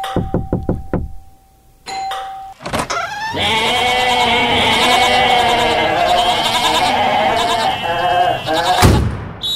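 A few quick knocks, then a loud, sustained chorus of goats bleating for several seconds, wavering and nasal, filling the scene with no talking.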